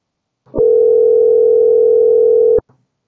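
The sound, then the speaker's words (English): A phone call to an 843 area code number rings once, a steady electronic hum lasting about two seconds before cutting off. It is loud, with no one speaking, and the call goes unanswered. “let's see if we can call this guy. 843, and boop. It's calling.”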